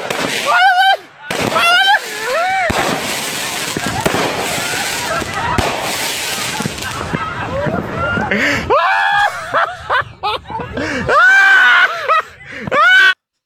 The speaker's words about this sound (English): America, the greatest fireworks video ever.